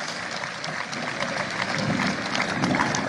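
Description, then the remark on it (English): Audience applause after a speech line thanking the President, a steady crackle of many hands clapping that swells slightly in loudness toward the end, with no voices over it. “That's an applause line.”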